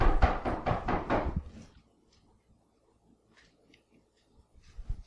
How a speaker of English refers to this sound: I don't know if the knocking on the door was audible, but I was having a vegan pizza delivered.